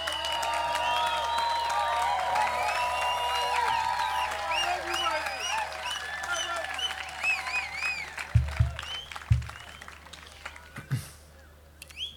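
Sustained audience applause for a performer at a live music show, a dense wash of clapping layered with high whistle-like or chirping tones, thinning out toward the end, where a few dull low thumps break through.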